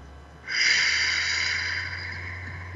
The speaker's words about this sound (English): Take another breath, closing your eyes this time. Breathing out.